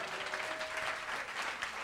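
Steady audience applause for a comedian, a dense wash of clapping hands at an even, fairly loud level throughout, with a faint held tone running beneath the first half.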